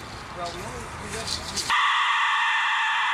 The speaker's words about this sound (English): Watch, listen how he plays it. This is just him blowing through a skull. This is the dead whistle. Here we go, listen to this.